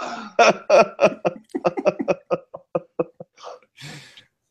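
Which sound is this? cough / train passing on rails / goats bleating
cough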